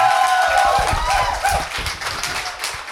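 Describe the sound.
An audience applauds in a dense, steady wash of claps that holds loud for about three seconds, with voices and cheers calling out over the clapping.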